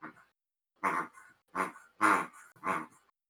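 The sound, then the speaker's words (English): A female dog growls playfully in four short, rough bursts separated by brief pauses, loud and gravelly, with no one talking, while playing with a piggy toy she grabbed from a table after jumping up on a chair. “She jumped up on a chair and grabbed the piggy from the table. Oh, that's bad. I'm shook. That's a bad dog.”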